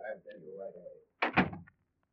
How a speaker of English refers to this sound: He knocks on a door. And while you're both waiting, you think how neatly your trick worked. He's led you right to the Evans. Then the door opens and you get a shock.